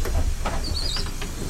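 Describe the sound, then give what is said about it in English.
Steady low rumble and road noise from inside a moving city bus, with a thin high-pitched whine rising briefly midway through. No one speaks. “Get me off the fucking crazy bus full of scary people.”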